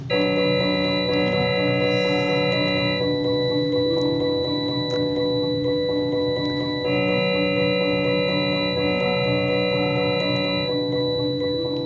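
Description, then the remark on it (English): A simple electronic melody with thin, buzzy ringtone-like tones, a tune evolved over 150 generations of listener choices and played on a Nokia phone, plays in repeating phrases at a steady, fairly loud level, with no voices present. “I mean, it's not bad for something played on a Nokia. Yeah. Yeah, you're not impressed. It sounds like a ringtone.”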